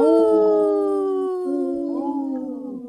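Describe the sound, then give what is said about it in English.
Several wolves howl together in a pack chorus, long sustained overlapping tones that waver and rise, loud and continuous across the whole stretch with no talking. “That was a good pack howl, you guys.”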